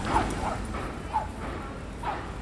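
A dog barks in a series of short, sharp yaps, about four of them at irregular intervals, moderately loud against a steady background hiss, with no talking.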